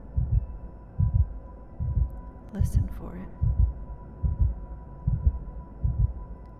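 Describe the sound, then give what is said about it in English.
A steady heartbeat-like drum thumps low and deep, about eight beats in a slow even rhythm, over a faint steady hum, while a soft voice briefly speaks midway, in a guided meditation evoking the heartbeat of Mother Earth. “Feel her heartbeat.”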